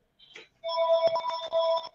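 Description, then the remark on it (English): A house phone rings loudly, its electronic tone holding steady bands that warble slightly, after a brief chirp at the start. No one speaks. “Hey, your house phone's ringing.”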